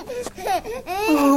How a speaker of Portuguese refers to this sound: Pompílio emociona-se com o choro do bebê